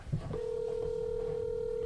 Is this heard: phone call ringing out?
yes